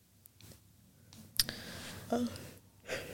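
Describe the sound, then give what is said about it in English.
A woman, who is drinking a Red Bull, yawns in a long, breathy exhale, with soft mouth clicks and smacking sounds around it. The sounds are quiet, and no one speaks. “She's drinking a Red Bull and she's still bloody yawning.”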